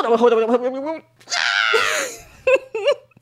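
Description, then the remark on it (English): A voice imitates a girl's shrill, wavering scream from a movie, lasting under a second, after a moaning vocal lead-in and followed by a couple of short yelps, fairly loud. “A girl screams, and it is the worst acting I've ever seen.”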